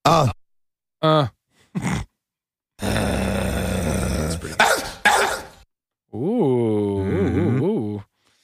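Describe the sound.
A person vocally imitates a dog: a few short, sharp barks, then a long rough growl, a couple more barks, and a drawn-out howling yelp, close and loud.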